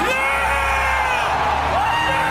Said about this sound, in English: So the crowd goes fucking crazy because this is the first time they've seen Kratos in 3 years, which is a longer gap for God of War. And Kratos just, that huge pop obviously was when Kratos showed up.